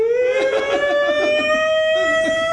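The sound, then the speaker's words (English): A voice imitates an exaggerated wailing cry: one loud, sustained, siren-like wail that creeps slightly upward in pitch for about two and a half seconds. “he cries like Harvey Keitel when the wife dies”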